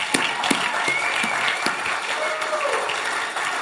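An audience applauds the mothers standing among them, a dense wash of many hands clapping at an even level throughout, with a couple of faint whistles or cheers rising above the noise.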